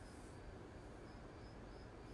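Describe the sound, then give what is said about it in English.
Faint, steady crickets chirp outdoors at 10 o'clock at night in California, their high trill pulsing gently over a low, constant background rumble. No one speaks. “I'm out with the crickets. It's 10 o'clock California time.”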